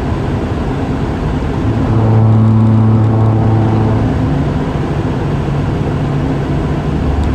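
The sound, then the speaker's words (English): A heavy truck rumbles past, its engine drone and whine swelling loudest in the middle before easing back into steady low road noise. No one speaks. “Had a truck come over on me, so that was fun.”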